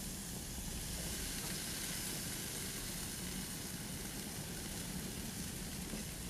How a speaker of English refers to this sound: As I put these meats down on the grill.